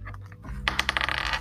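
Dice are rolled for an attack in a tabletop game, rattling and clattering across a hard tabletop, a quick burst of sharp clicks and bounces that tumble rapidly before settling, fairly loud with no voices.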